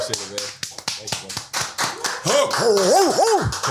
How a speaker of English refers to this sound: Let's give a round of applause for our special guest today, everybody.